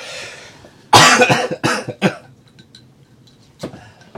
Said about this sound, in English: Can you talk for a second? I've got a cough.